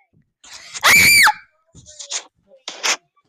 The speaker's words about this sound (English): Okay, mother! I'm not gonna stop screaming until this kid listens.